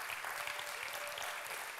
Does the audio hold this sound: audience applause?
yes